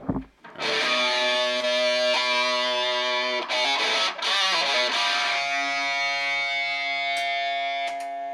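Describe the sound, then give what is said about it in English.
A distorted electric guitar rings out straight from the amp, with some frequency buzzing, a thick sustained chord with dense harmonics, briefly choked twice before ringing on and slowly fading, with no talking. “All right, so this is going to be my guitar sound straight out of the amp.”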